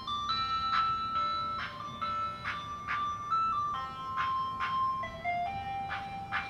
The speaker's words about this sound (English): What's that? The ice cream truck. It's following me.